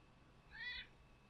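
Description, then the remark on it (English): A single short meow, voiced by a producer imitating a cat, rising and falling over about a third of a second against a quiet background. “Producer, will you produce, please, instead of meowing at me?”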